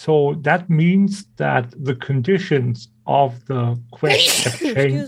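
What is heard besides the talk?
sneeze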